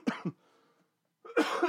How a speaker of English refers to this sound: I still have this terrible cough that I'm probably going to have for weeks.